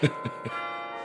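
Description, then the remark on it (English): Three quick strikes on bronze carillon bells in succession, each with a bright metallic attack, then a shimmering sustained ring of overlapping tones. The carillon has 36 bronze bells spanning three octaves, played through a system of levers and pulleys. Moderately loud, with no voices. “And it's from here, through a sophisticated system of levers and pulleys, that he controls the wise 36 bronze bells.”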